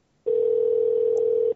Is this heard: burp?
no